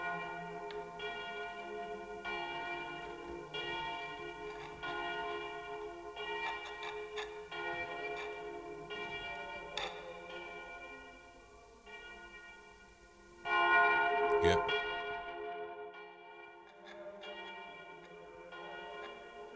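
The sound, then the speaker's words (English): Church bells ring loudly, with rich sustained tones overlapping and repeated strikes that swell sharply midway before decaying into lingering hum. No one speaks. “I shot this shot. Remember up... In the bells. The bells.”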